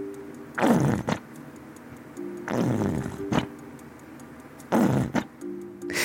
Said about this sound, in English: That was a really weird sound. The only word I can think of it is a ketchup bottle, squirting. Yes, that was definitely the sound of ketchup.